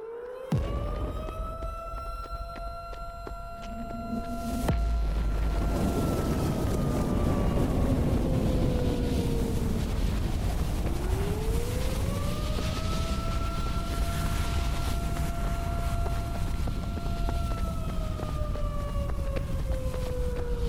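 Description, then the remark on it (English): A siren wails in long, slow sweeps, its steady tone gliding up and sinking down twice, loud over a dense rumbling noise bed with no voices. “Yarn number 4, the siren.”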